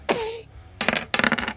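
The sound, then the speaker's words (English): Dice rattle and clatter across a hard tabletop in two quick bursts of rapid clicking, fairly loud, after a brief scraping swish at the start; the roll comes up a 5. “5 on the dice.”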